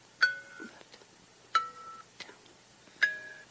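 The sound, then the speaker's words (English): Three electronic directional tones (up, left, down) from the iPhone game Blindfold Simon by Blindfold Games sound in a steady sequence, each a sharp attack followed by a sustained pitched beep, with the pitch shifting slightly between them and faint clicks in the gaps. “I'm playing Blindfold Simon.”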